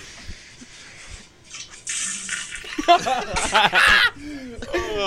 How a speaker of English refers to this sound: Oh, this is gonna be water.